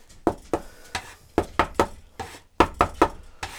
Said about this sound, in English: So I am just trying to keep my egg mixture contained and just chopping bits of flour. Gradually working from the outside in. It'll want to run on you, but that's okay. Just keep going. Try to keep it contained. Now it's starting to cohere.